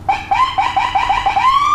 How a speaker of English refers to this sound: You know what that is? That's like when a cop's just being a dick. I know we got a sirens like that in New Jersey, man. Yeah, that's what they do here in America when they're just being cocksuckers.